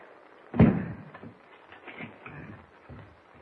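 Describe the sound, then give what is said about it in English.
The door of a shack in the woods slams shut at night with one heavy thud, followed by a few quieter knocks and rattles, like a bolt being slid into place. No one speaks. “Bolt the door, Chuck.”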